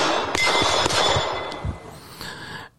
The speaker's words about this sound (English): Of course, this is at a gun range, so you can hear the match still going on.